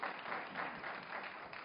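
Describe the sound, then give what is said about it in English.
A group of people applauding a reader after a Bible reading, a dense, steady patter of many hands clapping at once, holding an even loudness throughout the brief moment with no voices over it. “Clap it up”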